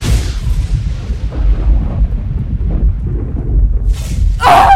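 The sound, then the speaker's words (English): A lightning bolt strikes a bullet in flight, exploding it: a loud electrical crack and blast opens into a heavy, rolling rumble that churns low throughout, then a second sharp, sizzling crack bursts out near the end. No voices. “A lightning bolt struck the bullet in flight, exploding it inches away from Eva's face.”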